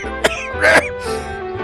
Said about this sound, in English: Anyone got a cough, sweet? Need me to slap your back there?